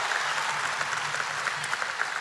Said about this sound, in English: Worthy is the Lamb. Somebody shout and clap and say, worthy is the Lamb.